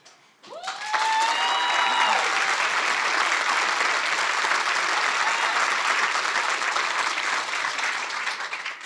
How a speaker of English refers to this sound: So I'm going to stand behind each speaker, ask you to applaud.